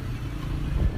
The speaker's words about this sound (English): Despite highways, dedicated bus lines, and efficient subway lines, downtown Tehran is still often jammed with cars and hijacked by smog.